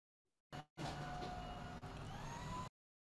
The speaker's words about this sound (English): My child decided it was a good time to vacuum. Oh, don't worry about it. I thought it was the blender. Oh, yeah, no, the vacuum cleaner.